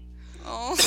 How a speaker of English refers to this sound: Oh, just for added effect. Yeah, as evidenced by the sound of my lovely cough.